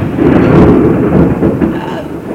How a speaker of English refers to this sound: And we've got a thunder and lightning storm, and we're going on.